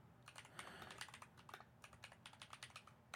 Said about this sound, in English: I'm typing right now, figuring out which game did this.